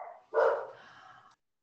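A single sharp dog bark rings out, its tail trailing off over about a second, with a softer lead-in sound just before it and no talking.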